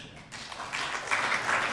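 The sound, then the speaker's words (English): A crowd breaks into applause, a dense wash of many hands clapping that swells and stays steady and fairly loud for a couple of seconds, with no voices over it. “So, you're clapping now.”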